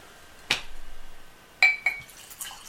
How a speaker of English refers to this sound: I don't need more. What? I'm pouring you more, damn it. Fine!